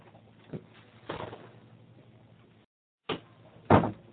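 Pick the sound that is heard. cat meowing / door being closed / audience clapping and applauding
door being closed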